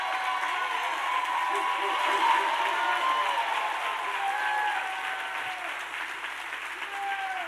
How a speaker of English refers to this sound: Let's give you Pastor and First Lady a hand clap for the work that they're doing. Praise God. Yeah, stand up. Give them a standing ovation.